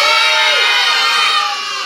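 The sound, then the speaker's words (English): A group of children cheers and shouts together in response to being asked whether they had a lot of fun, a loud, sustained burst of high-pitched voices with no single speaker standing out, fading slightly toward the end. “Yeah. That's a very good response.”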